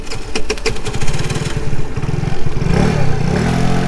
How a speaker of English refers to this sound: As I rode home on my motorcycle